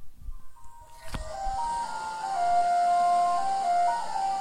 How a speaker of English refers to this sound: And that's an ice cream truck. That is, like, mournful. That's some sad ice cream.